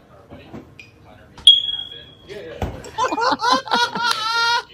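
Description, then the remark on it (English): A smoke detector gives a single sustained, high-pitched electronic beep, the sound it makes when someone is in the kitchen, followed by people laughing loudly. “Okay, so this is what a smoke detector does when you're in the kitchen.”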